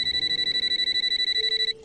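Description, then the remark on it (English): A telephone in a horror movie scene rings with one loud, high-pitched burst of rapid, even trilling that runs for well over a second and then stops abruptly. No voices are heard. “And he hangs up, goes to the Jiffy Pop, and the phone rings.”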